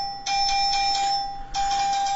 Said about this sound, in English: That was weak. That was weak. My buzzer is pretty good. Yeah, you have a better buzzer, but your dinger is kind of lame.